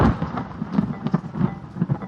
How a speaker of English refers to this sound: I'm hearing this thunder and lightning, and I'm scared.